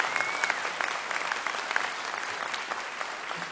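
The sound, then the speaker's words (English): A crowd applauds the band steadily for the full few seconds, a dense, even patter of many hands clapping at moderate loudness with no voices over it. “Yes, you can clap for them.”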